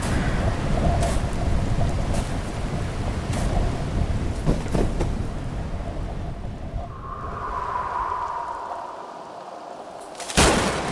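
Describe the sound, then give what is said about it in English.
A thunderstorm: steady heavy rain hisses throughout under deep rolling rumbles, a whistling gust rises midway, and a sharp crack of thunder from a huge lightning bolt strikes near the end. “That was the biggest fucking bolt of lightning I've ever seen.”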